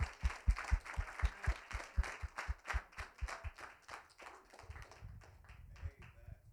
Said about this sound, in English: Come on, let's give the Lord a praise. Let's clap our hands to the Lord, all you people.